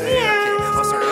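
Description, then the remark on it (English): A cat lets out one long, drawn-out, loud meow, its pitch wavering and bending as the call stretches on, with no talking. “Actually, wasn't any talking. Just a cat meowing.”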